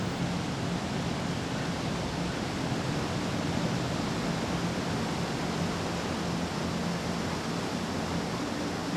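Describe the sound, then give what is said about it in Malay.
A steady, dense roar of crashing water from a hidden 12-metre waterfall that feeds rice-field irrigation, its white water pouring down constant and unbroken, with no voices or other sounds. “Air terjun dengan ketinggian 12 meter. Airnya menerjang putih dan membasahi siapa saja yang di bawahnya.”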